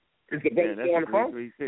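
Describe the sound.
A voice comes through a phone line, thin and band-limited, as speech echoes back in a brief continuous stretch at moderate loudness.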